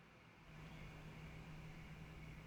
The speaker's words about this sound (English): Oh, there goes a tow truck.